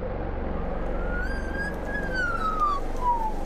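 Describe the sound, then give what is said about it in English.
An Australian magpie imitates a fire siren, a single drawn-out whistled tone that slowly rises then falls in pitch, heard over a steady low rumble of background noise. “Hearing isn't a fire siren. It's a real recording of an Australian magpie's chirp.”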